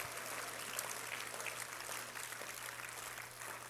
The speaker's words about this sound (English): That's the passion of the Lord Jesus Christ. Can you clap your hands if you're thankful for it? Hallelujah.